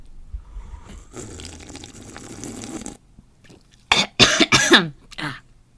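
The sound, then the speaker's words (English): A few seconds of fizzing liquid hiss and sipping of a bubbly canned drink, a brief pause, then a burst of several harsh, loud coughs in quick succession. “The bubbles hit me every time. I didn't know it was going to be so bubbly.”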